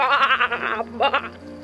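A sheep bleats twice, loud: a long wavering baa followed by a shorter one after a brief pause.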